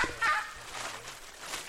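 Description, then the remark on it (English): Akakai birds give sharp, harsh alarm calls warning of intruders from high overhead in the canopy of a remote corner of the Amazon rainforest, a quick burst of repeated cries over a steady hiss of forest ambience. “In this remote corner of the forest, high overhead in the canopy, akakai birds warn of intruders as our footsteps crunch dead leaves on the forest floor.”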